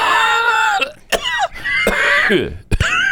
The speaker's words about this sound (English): It's 2050. A climate change worst case scenario has come to pass. The air is polluted, making you cough.